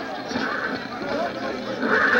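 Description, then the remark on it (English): Horses neighing and whinnying over a dense, steady wash of commotion, the calls swelling louder toward the end, with faint clattering hooves mixed in: a team of horses pulling a fire engine to a fire in Manchester, England, in 1826. “Going to a fire in 1826, a team of horses pulling the fire engine of the Norwich Union Boys Firehouse.”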